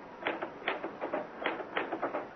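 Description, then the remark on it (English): Typewriter keys clacking in a quick, uneven run of sharp mechanical strikes, moderately loud, with no voices over them. “Ah, why did I never learn to work a typewriter?”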